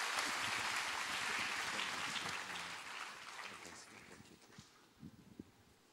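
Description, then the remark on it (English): A church crowd applauds a woman invited to share her healing testimony, with dense, steady clapping that stays loud for a few seconds, then gradually thins out and fades, leaving a few scattered claps at the end. “Come on, let's give her a clap offering.”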